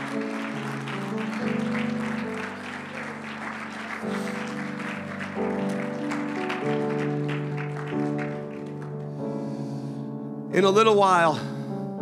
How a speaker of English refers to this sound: Come on, stand to your feet, clap your hands, and shout unto God.